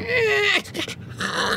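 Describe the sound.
A voice imitates a small monkey's chatter, fairly loud: a drawn-out whiny squeal, a quick burst of choppy squeaks, then another strained, nasal squeal, all alone without talk.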